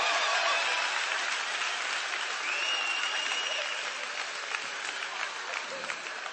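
A crowd applauds steadily for several seconds, a dense wash of many hands clapping at once, loud at the start and easing slightly toward the end, with no talking over it.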